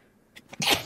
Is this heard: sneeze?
yes